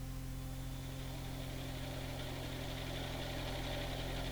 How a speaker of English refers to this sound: I got into the car again and drove on slowly. I was beginning to hate the car.